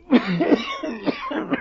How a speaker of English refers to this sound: Yes, we are under the river now. Why, is the moisture perhaps too much for your cough?